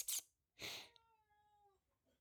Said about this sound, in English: My cat is in here too, by the way, so this could just be a lot of fun. Hey, come here. Come on.